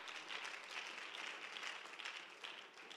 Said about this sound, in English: Clap your hands to him as you're seated.